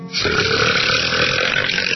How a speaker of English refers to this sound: No shame, no guilt, no more tummy rumbling, smelly belches, no more stopping in mid-sentence to uncork a big cheesy blaster.